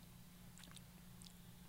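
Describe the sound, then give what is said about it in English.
Quiet crunching as someone bites into cotton candy flavored puffed corn: a few short crisp crackles in two small bursts over a steady low background hum, with no talking. “They're cotton candy flavored puffed corn.”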